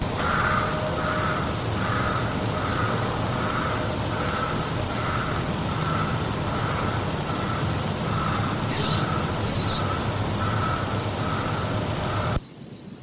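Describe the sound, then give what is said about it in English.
Fast, rhythmic heavy breathing repeats steadily throughout, each breath a soft pulse over a constant loud hiss of background noise, with no talking, cutting off abruptly near the end. “So it's just a rhythmic, heavy breathing, man.”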